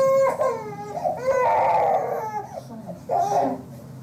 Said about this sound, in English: It started with cussing, then you hear slap noises, and his crying changes from a distress cry to a pain cry.